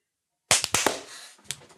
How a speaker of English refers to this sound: That was a suspicious delay on that clap that, like, it sounded really far off. Probably just lag. It's lag.